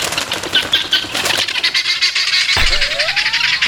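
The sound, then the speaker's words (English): Loud, harsh calls of guinea hens out in a park repeat in a rapid, rasping rhythm, with a thin rising tone near the end and no one speaking. “The house I was living in at the time had a carport, and they would come up into the carport, and they would do their guinea hen noise.”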